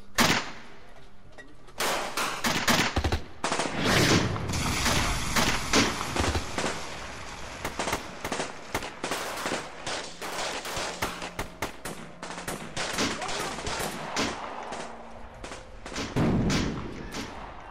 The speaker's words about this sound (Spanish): Los sonidos de metralletas y fusiles estremecen todo el pueblo.